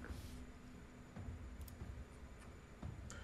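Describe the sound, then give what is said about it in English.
Two base dice are rolled in a game to see whether a power overcharges or causes a mishap, tumbling across a hard surface with a quick series of light clacks and taps and landing on a 5 and a 2. Quiet, no voices, over a faint background hiss. “So right now roll 2 base dice to see if you overcharge or cause terrible things.”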